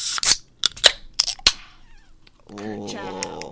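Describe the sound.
Several beverage cans are cracked open together on a count of three, popping one after another in a quick, uneven cluster of sharp snaps and brief fizzy hisses, then a man starts talking.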